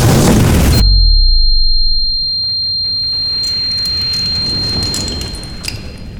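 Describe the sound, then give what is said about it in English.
A loud, heavy crash as people crash through a floor from a creature's impact, then a low rumble and a thin, steady high-pitched ringing tone, with scattered faint crackles of settling debris. No one speaks. “We crashed through the floor.”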